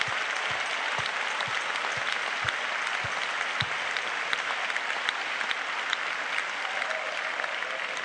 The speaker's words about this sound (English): Why don't we give the Lord a hand clap of praise right now? Thank you, Jesus.